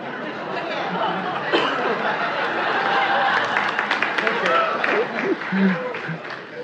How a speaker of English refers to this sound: The bar is low when you applaud that. The bar is low.